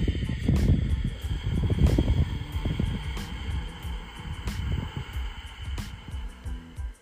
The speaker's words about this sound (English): Ujjayi breath, victorious breath. Tap it in. Feel the power. Inhale. Exhale through the nose.